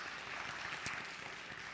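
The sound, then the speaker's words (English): A church audience claps steadily to welcome its new technical media director, a dense, even patter of many hands, moderately loud, with one sharper clap standing out near the middle. “He is, we can clap. We're allowed.”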